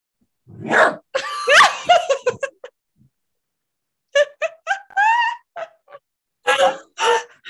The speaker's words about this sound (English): No, Doug, I will not pick you up if you bark at me. That's a boundary.